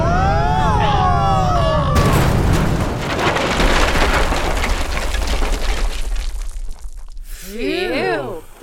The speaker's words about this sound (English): Good lord. That explosion was so bright, I could see it through my eye patch.